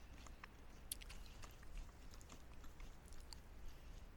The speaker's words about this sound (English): Also, your chewing sounds are very faint. So, I'm led to believe that this is something soft. Yeah, it's pretty soft. Perhaps gooey? Part of it is, yeah.